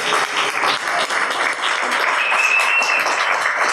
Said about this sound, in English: Can we give them a big round of applause to prove we've got a live audience?